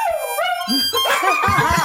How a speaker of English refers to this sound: Because my dog, every time I even attempt to play it, loses his fucking mind. You'll be able to hear him.